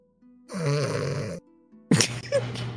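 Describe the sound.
Loud, rasping snores of Dolus, sprawled asleep in a bed, come from inside a room behind a door: one long rumbling inhale followed by a second harsher snort, heavy with nothing else in the background.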